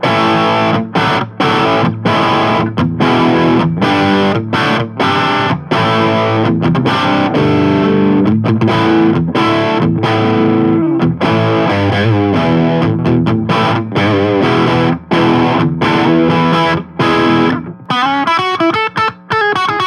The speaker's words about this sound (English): So let's go to a crunch setting on the bridge, on the lead circuit.